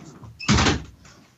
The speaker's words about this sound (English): Drink every time you hear the door open.